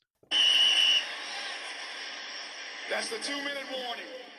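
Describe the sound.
A single shrill, high-pitched whistle blast lasting under a second cuts through, followed by a steady wash of background noise and then people talking.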